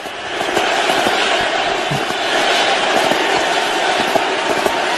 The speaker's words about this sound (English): Maybe you can hear the USA, USA part in the background a little bit there.